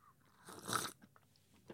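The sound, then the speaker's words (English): A single sharp, airy slurp of a hot dark coffee sipped from a cup, followed by a few small wet mouth and swallowing sounds. “I'm gonna do the annoying coffee git slurping.”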